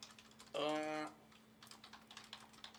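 A brief, loud buzzing tone is followed by a quick, irregular run of computer-keyboard typing, the light clicks steady over a faint background hum.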